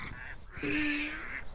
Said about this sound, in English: Yes, they're called mallard ducks. That's the male mallard duck. What colour are the females? Can you see? Oh, they're brown. Brown and light brown.